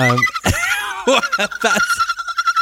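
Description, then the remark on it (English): A person imitates a dolphin with high, squealing whistles and rapid clicky chirps, the pitch sliding up and down in short bursts before settling into a sustained shrill tone. “that's a dolphin. That's a dolphin.”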